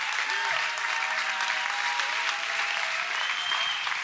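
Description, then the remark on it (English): A church audience claps and applauds steadily as people come forward, a dense, continuous wash of many hands at an even, fairly loud level, with faint voices audible beneath it. “Keep coming. Keep clapping.”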